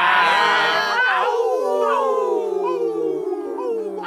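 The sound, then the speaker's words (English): Several voices howl together like a pack of wolves, long wavering tones sliding up and down and overlapping, loud for a few seconds. “Ooh, that's some good howling.”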